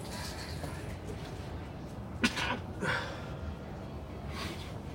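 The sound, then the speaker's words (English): A sudden, sharp sneeze bursts out midway, with a quick breathy follow-up, against quiet, faint background noise. “I gotta always sneeze.”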